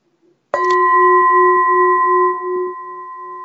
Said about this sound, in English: Okay, let's do a gong.